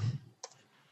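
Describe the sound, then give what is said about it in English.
A twenty-sided die is rolled for an attack in a tabletop game: a soft low thump, then one sharp, bright clack as it lands on a hard surface, quiet, with no voices. “Let's roll see. The goddamn dice.”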